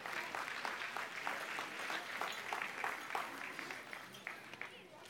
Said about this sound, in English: You guys, as our kids are being seated, give them one more big hand clap of praise tonight.